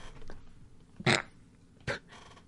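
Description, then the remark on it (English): A cat named Tornado lets out two short, harsh snarls as it attacks a person, loud aggressive bursts about a second apart over a low background rumble, with no talking. “Saying everybody should have a cat because they don't do anything fucked up ever.”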